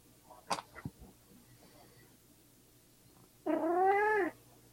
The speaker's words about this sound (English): Kitty. Honestly, I'm surprised he isn't as talking as much as he normally does. Usually, the last time I did this with you, I had to keep muting myself while everybody else was talking because he would just get right up into the mic and start